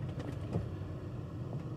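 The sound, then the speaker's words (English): A car's air vent fan blows a steady, low whooshing hum inside the cabin, with faint engine rumble beneath it and no voices. “I gotta get some air going inside this car.”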